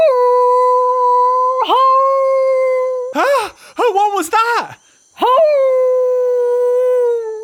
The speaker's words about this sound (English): Sounds like something is howling. Oh, let's follow the sound and find out what it is.